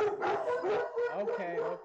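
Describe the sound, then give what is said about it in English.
A dog barks and yowls outside in drawn-out, howl-like bursts that run together for about two seconds, moderately loud. “There's some sort of dog barking outside.”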